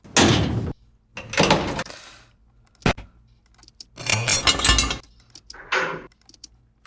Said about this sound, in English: Those are some of Frank Bree's bear traps.